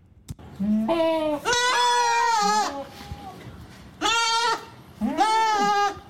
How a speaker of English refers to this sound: You know, goats sound a lot like sheep.